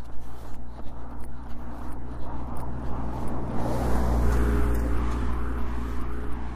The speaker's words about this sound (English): There's a truck carrying washer dryer goes by.